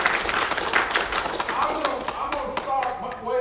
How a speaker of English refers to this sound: Give the Lord a great big hand clap of praise this morning. Praise God.